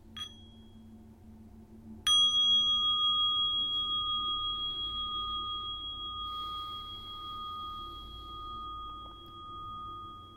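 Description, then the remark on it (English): A small mindfulness bell is struck once with a clear, bright ding after a faint earlier tap, then its pure tone rings on and slowly fades over several seconds. “Now I'm going to invite the little bell of mindfulness so I don't go too fast.”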